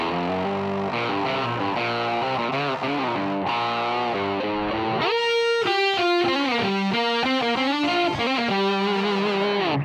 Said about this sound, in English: Here's the rhythm track. And once again, there's a guitar and synth part doubled up. The guitar seems to be more upfront in the first part, but the keyboards sound more prominent in the second half.